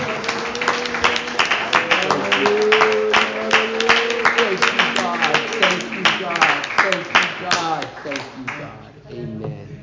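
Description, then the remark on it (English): An audience claps their hands in praise to the Lord after a child dedication, a dense, steady patter of many hands while voices call out and talk over it, fading near the end. “Let's give the Lord a hand clap of praise together.”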